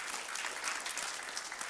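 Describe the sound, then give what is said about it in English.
A roomful of people clapping together for those who have come, a dense, steady burst of applause that stays loud and even throughout, with no voices standing out above it. “All right, let's clap for these that's come.”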